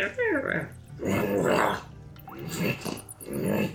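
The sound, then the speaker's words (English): A person voices a series of nasal, husky growls like a large creature, several gruff bursts in a row, fairly loud with brief pauses between them. “you swear you can kind of hear a bigger, very nasally, husky sound. Not like the fluffy dog, but like a large creature.”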